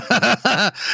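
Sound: voice imitating snoring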